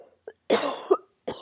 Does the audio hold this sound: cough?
yes